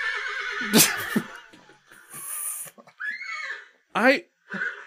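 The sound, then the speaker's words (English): Several horse whinnies and neighs, playing from a browser tab, ring out in quick succession, loud and shrill with quavering pitch sweeps, broken by short gaps, with a low snort-like sound between them. “Horses would like Dennis Hopper. I'm so confused. I actually closed that tab and they will not be silenced.”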